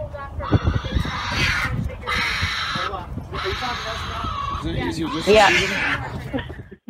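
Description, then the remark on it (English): A raccoon screams in a series of harsh, shrill screeches and chattering squeals, loud, coming in several long bursts with brief gaps between them. “All right, so we're going to hear some of these raccoon screams, and you're going to tell us if it's accurate to the 30-pound raccoon that ravaged your leg.”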